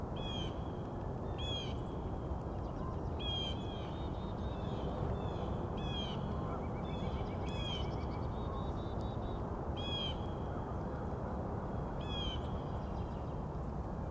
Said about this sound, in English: A couple more crows headed this way. There we go. It's the crows.